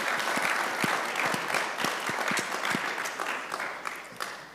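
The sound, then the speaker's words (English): A crowd applauds steadily for the Quill and CoHost panelists welcomed on stage, many hands clapping in a dense, sustained patter with scattered sharper claps standing out. The clapping stays fairly loud throughout with no talking over it. “Can we get a round of applause for Quill and CoHost?”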